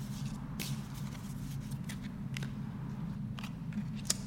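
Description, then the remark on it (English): Soft papery shuffling with several brief crisp snaps and flicks as tarot cards are shuffled and picked, over a steady low hum with no talking. “shuffle and pick.”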